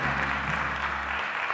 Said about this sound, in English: Come on and give God another hand clap of praise.